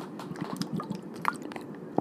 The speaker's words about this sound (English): Probably the biggest misconception I see is with trainers, I've seen people say this, and I'm going to take a drink of water, so hold on.